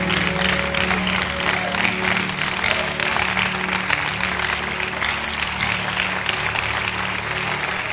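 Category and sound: crowd, audience clapping hands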